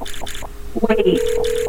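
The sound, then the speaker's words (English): A telephone rings with a steady electronic tone that starts partway through, loud, after a brief burst of muffled, busy sound at the start. “This episode has not been programmed to receive calls.”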